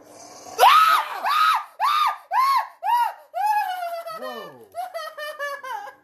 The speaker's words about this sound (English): I did not expect that. Also, your screaming doesn't help.